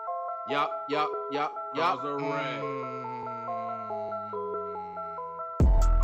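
A new hip-hop track's melodic intro plays: four bright, chiming notes, then a sustained, wavering synth line, cut off by a sudden loud burst at the end. No one speaks over it.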